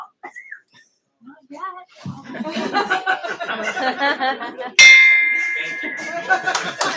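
A bell is struck once at the City Club of Cleveland, loud, its bright tone ringing and slowly fading over a room full of chatter and laughter.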